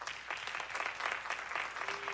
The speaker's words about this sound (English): How many of you pulled for Gonzaga on Monday night? Will you clap?